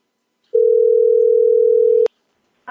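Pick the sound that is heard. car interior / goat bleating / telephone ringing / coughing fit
telephone ringing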